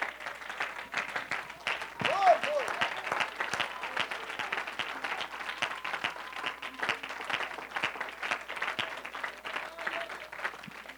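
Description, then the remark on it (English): An audience claps their hands in praise to the Lord, a dense, sustained wave of applause with steady rhythmic slaps throughout, voices faintly mixed in beneath it. “In Jesus' name, clap your hands to the Lord and give God some praise.”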